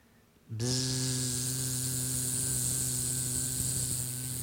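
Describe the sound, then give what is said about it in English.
A voice imitates a buzzing bee with a loud, steady, droning 'bzzz' that starts abruptly and holds without a break for about four seconds. “That's my B. Play along with me.”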